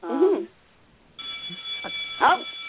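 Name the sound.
school bell ringing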